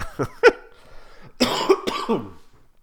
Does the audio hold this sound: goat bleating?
no